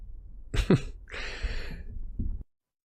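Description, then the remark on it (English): A loud cough from a person who is still a little stopped up: a sharp burst followed by a raspy, breathy exhalation and a rough trailing hack, all within a couple of seconds with no talking. “It's because I'm coughing.”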